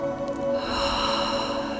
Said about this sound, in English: So let's take a deep breath. Hold it at the top. Release out your mouth. In through the nose. Hold it.